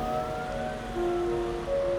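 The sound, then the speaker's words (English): Approaching police and ambulance sirens wail with steady, overlapping tones above a low traffic rumble, holding fairly loud throughout and swelling slightly partway through, with no voices. “Ah, I hear the sirens now.”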